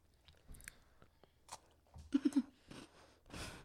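Crunching as someone chews a crunchy chocolate wafer candy, with a quick burst of loud bites near the middle and softer chewing before and after, heard alone without talking.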